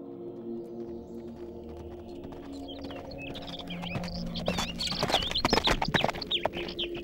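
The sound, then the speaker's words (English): A ridden horse's hooves clop at a steady pace through dense forest foliage, growing louder, while songbirds chirp and tweet brightly overhead against a low ambient hum. No one speaks. “steered his horse through the dense foliage while songbirds flitted overhead.”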